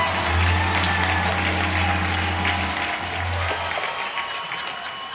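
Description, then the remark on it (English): A church audience applauds steadily for about five seconds after the host is introduced for the 'Stop the Pastor!' game, a dense wash of clapping that holds strong before easing slightly toward the end, with a low steady hum beneath it. “Hey, can we do that applause thing like every week?”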